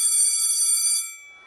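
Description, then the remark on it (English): A school bell rings with a bright, shrill, continuous metallic clatter for about a second, then cuts off and its tone fades away. No one speaks. “That familiar sound means it's back to school time.”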